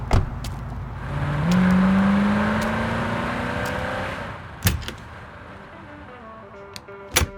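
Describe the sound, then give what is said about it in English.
A vehicle hums and swells, then fades, followed by a sharp click of a motel room door latching shut and another crisp click a few seconds later. “It's not until my motel door clicks shut behind me that my nearly 24-hour day finally hits me.”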